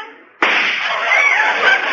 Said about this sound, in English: Hey, what was that for? I don't know. Thought it was time for some gunshots.